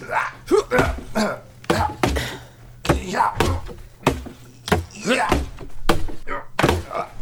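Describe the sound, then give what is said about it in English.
An axe chops into a log again and again, a dozen or so sharp, loud woody thunks at an uneven pace, with people talking between the strikes and a low steady hum underneath. “This week we're going to be chopping some logs.”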